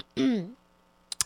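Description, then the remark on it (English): A single short, voiced throat clearing, fairly loud, with a gruff falling tone, followed by a brief pause and a few quick breathy bursts. “No, that was really me clearing my throat.”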